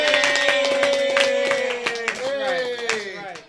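Scattered, irregular hand claps patter steadily for a few seconds beneath a sustained, high-pitched cheering voice that holds a long tone and gradually fades.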